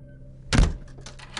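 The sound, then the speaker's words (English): An apartment door slams shut with a heavy thud, followed by a few quick, lighter clicks and rattles as it's locked. No voices. “I slammed the door, locked it, and collapsed.”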